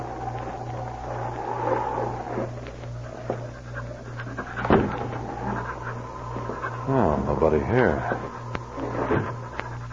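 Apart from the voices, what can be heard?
dog panting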